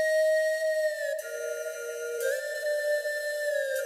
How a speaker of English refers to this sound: They're not actually whale sounds, but I just imagine that they're robot whales under the ocean.